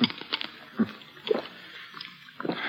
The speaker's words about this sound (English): Here. You sip a little water through this glass straw.